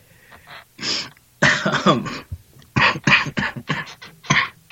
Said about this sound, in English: Sorry, got me laughing and coughing and muting myself as much as possible. Sorry. I am still sick, by the way, for those of you who are wondering.